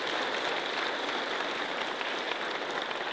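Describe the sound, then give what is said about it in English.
An audience applauds steadily, dense clapping filling the whole moment at an even, sustained loudness with no voices rising above it. “So I know you want to pledge your love and support to Kyle by letting it be known by saying amen and applause.”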